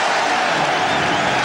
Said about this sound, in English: And right now, the Knicks are cooking. It's their best spurt of the game. They've got the crowd going wild.